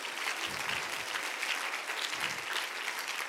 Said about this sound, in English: Would you clap hands to the Lord while you're seated?